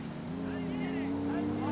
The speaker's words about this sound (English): Sound of trucks approaching in the distance.